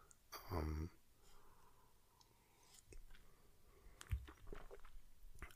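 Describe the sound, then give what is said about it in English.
A short slurping sip of coffee, a new Four Sigmatic coffee, followed by quiet swallowing and a few soft clicks and clatters, like a cup being handled. No one speaks. “I have a sip of coffee.”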